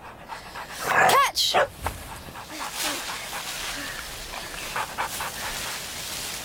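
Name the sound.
dog panting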